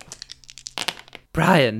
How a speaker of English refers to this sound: Are you seriously rolling dice on that? Oh my god, it sounds awful. It sounds like Meg snoring. Jesus, I can't believe you don't have a mat.